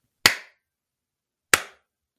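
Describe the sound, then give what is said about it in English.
Two sharp hand claps, spaced more than a second apart, each ringing briefly before fading into silence, given in the woods as an answer to a yes-or-no question. No voices are heard. “"Are you a man? Clap once for yes and twice for no."”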